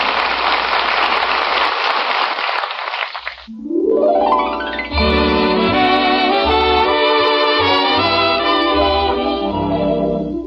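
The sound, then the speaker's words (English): A steady, dense hiss of rain pours down for about three seconds, then stops as orchestral music swells in and plays through to the end. “It's raining!”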